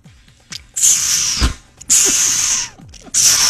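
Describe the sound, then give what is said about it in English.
A person does a human beatbox sound effect imitating a squirrel with three loud, harsh, hissing bursts, each under a second long, with a brief low thump between the first two and short quiet gaps between them. “For those that are new to the show, that would be a squirrel. Sound effect.”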